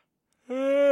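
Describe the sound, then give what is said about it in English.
A person's yawn starts after a half-second of silence: a drawn-out, voiced, tonal groan that holds a steady mid pitch and swells gradually louder. “I'm going to yawn.”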